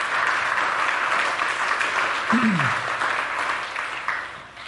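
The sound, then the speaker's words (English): A church audience applauds the news that the gospel has been shared with 698 people this year. The steady clapping fills the whole stretch, a dense wash of many hands at once, holding fairly even before thinning slightly at the end, with a brief low tonal sweep partway through. “Yeah, that's worth clapping over.”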